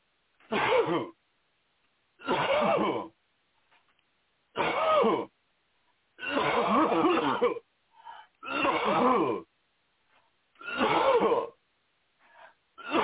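A person breathes deeply and coughs repeatedly during a deliverance prayer, about six strained, throaty bursts in a fairly steady rhythm with short pauses between them, clearly audible, with no talking.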